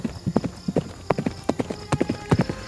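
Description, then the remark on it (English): Horse hooves clip-clop at a brisk, steady pace as the horse is ridden and urged to hurry on, a rapid run of sharp knocks repeating in an even riding rhythm with no voices over them. “And then she like pulls on the horse. Ha! So like, hurry on.”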